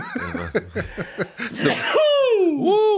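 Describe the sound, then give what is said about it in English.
A quick run of breathy, hitching vocal bursts builds into a sharp, noisy sneeze, then a drawn-out squealing vocal glide trails off. Loud, with no talking. “That is a perfect edit point to finish great films. Sneeze.”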